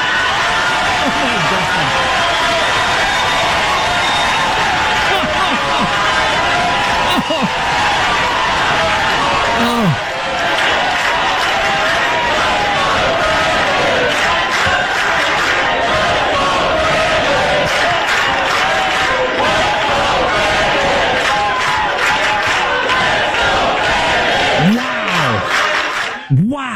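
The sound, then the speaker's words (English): A huge crowd roars and chants nonstop, a dense wall of cheering and shouting voices that stays loud and energetic for the whole stretch, with no pauses. “And the crowd going wild.”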